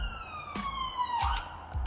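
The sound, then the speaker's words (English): A police siren in London sounds steadily as it passes, its wailing tone sliding slowly downward in pitch, with brief bursts of street traffic noise around it and no one speaking. “Sorry, just take a moment for all the crime and all the sirens that go off in London.”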